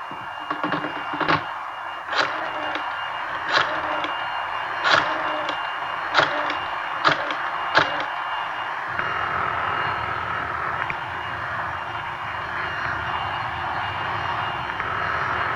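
A vacuum cleaner runs in a house with a steady, whining motor drone, broken by a series of sharp clicks early on, then settling into a deeper, rougher roar for the rest.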